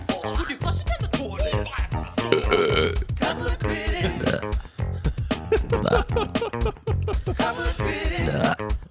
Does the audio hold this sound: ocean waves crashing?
no